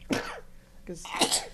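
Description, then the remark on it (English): Two loud, voiced sneezes in quick succession: a sharp burst, then a brief pause before a second, longer 'ah-choo' with a hissy, breathy release. No talking over them. “Won the cup right sneeze there.”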